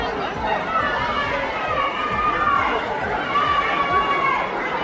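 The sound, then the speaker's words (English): A dense, steady crowd commotion at a concert venue in Milwaukee, right after security came on stage and escorted the singer away: many overlapping voices murmuring and calling out at once, with occasional louder shouts rising above the constant roar throughout. “Immediately after, you can hear the commotion from the crowd.”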